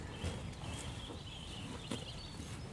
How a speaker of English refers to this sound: We are now surrounded by cows. It's lovely. I love that sound of grazing. Yeah. So much to graze on.